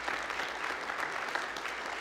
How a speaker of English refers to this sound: Let's give them all a hand clap.